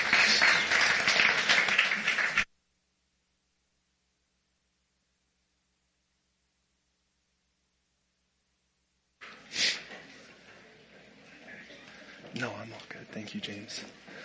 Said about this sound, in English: Oh man, that's a good start. Go ahead and give our worship team a hand clap, please.